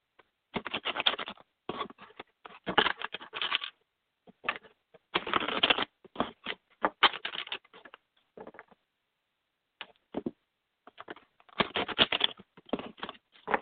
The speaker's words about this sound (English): I'm going to shuffle, and then just tell me when it feels right to stop shuffling, just say stop.